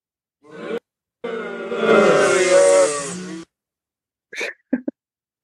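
A crowd booing sound effect: a crowd boos together in a dense, droning mass of low voices that swells for a couple of seconds and then cuts off, followed by a few brief, faint sounds.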